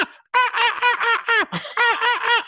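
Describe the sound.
A person imitates the looped squawking of CGI birds in a film with a rapid, repeated series of harsh, nasal cries, loud, sounding almost like a cackling laugh, with no other sounds around it.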